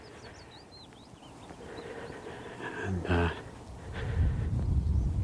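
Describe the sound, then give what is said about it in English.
Thin, high peeping calls of meadow pipits on a moor come in short, scattered notes, mostly early on, while a man speaks briefly and a low wind-like rumble builds toward the end. “Sometimes the only bird you can hear on the moor, peeping of meadow pipits.”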